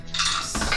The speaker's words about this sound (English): We're not gonna roll that dice anymore. He's not been nice to me these last few rolls.